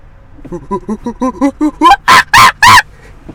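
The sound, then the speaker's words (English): A person imitates a monkey with a run of about eight quick, rhythmic hoots that grow louder and higher, then breaks into three loud, harsh screeches before falling silent. “I gotta do my monkey noise for the podcast.”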